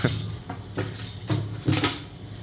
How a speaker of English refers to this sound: Just a minute while I get the door.